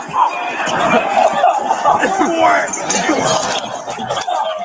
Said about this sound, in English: You hear all the coughing and shit in the background. You hear everybody like coughing up a lung, and the cops start walking away because they all just gassed themselves. They just got gassed.